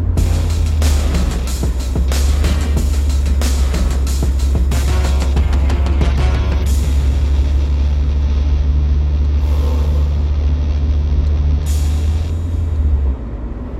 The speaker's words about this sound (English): in a very loud car because it is 10 degrees out and my car is very cold.